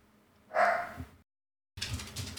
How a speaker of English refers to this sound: We'll blame the dogs for barking.